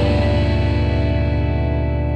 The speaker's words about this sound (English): much like a stone room, and it gives it sort of a medieval feel, which was not what I expected. I went into the mixing thinking of a more lush, open type of reverb, and then we went to this stone thing, and I was like, well, that's very interesting.